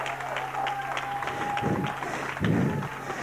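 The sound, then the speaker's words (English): An audience claps their hands together as praise to God during a sermon, in a dense, steady wash of applause that stays fairly loud throughout, with no one speaking over it. “Give God a hand clap praise.”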